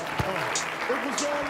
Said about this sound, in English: yes, give yourselves a round of applause real quick.